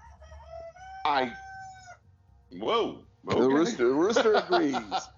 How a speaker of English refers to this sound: The rooster agrees.